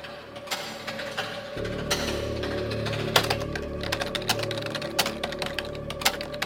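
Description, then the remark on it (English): Rapid, clacky keystrokes tap out in an uneven rhythm on a keyboard, part of a DVD menu's background sounds, sharp clicks over a low steady hum, with no one speaking. “There's a clacky keyboard, which to me was very like proto ASMR.”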